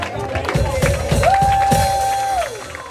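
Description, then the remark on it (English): An audience claps their hands for a neighbor in a steady rhythm, the claps crisp, while a sustained vocal-like tone holds and then glides down underneath, with crowd murmur in the background. “Now clap your hands for your neighbor.”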